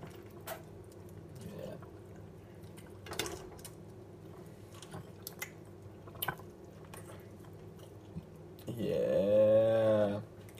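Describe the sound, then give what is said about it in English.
A dog gnaws on a chew, making sparse wet clicks and squishy crunches over a low, quiet background hum. Near the end comes a brief, louder squeaky whine. “And then I can just hear him like gnawing on it in the background.”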